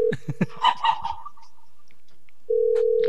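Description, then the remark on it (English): A steady low telephone ringback tone from a call placed on live radio sounds in two bursts, separated by a pause of silence, with a few brief clucking chirps near the start and no talking. “Still ringing.”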